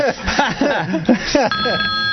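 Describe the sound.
A telephone starts ringing partway through for an incoming caller, a steady electronic tone sounding under continuous conversation between people talking.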